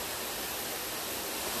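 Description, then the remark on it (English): A steady, unbroken roar of rushing water from a waterfall reached after a strenuous uphill hike, spread broadly across high and low tones at an even loudness with no voices or breaks. “So it was a pretty strenuous hike, mostly uphill, but now we're here at the waterfall.”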